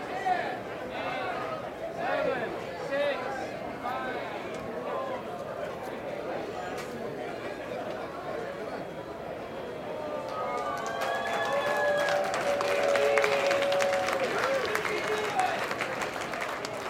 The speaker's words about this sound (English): Dad proves no match for the clock, and even the crowd's countdown ends in an anticlimactic whimper.